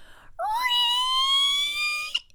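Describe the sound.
A voice imitates a loud, squeaky fart: one long, high-pitched squeal that slides up at the start, then holds steady for nearly two seconds before cutting off.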